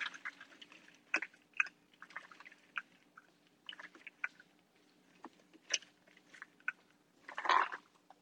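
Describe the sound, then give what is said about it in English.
Honey roasted peanuts are poured slowly out of a jar into a half cup measuring cup, making a scattered series of dry clicks and light rattles that ends in a brief, louder clattering rush. “I'm just going to pour these out of the jar slowly into our half cup measuring cup.”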